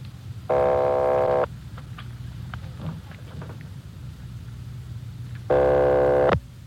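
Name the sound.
telephone line ringing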